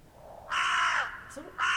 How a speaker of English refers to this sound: It's a crow though, can we just...